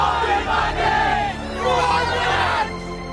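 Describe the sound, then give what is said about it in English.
A loud Wolverhampton football stadium crowd roars and chants together, a dense wall of many voices rising and surging continuously for a few seconds. “This is her love, and it grows evermore, each time she hears the famous crowd roar.”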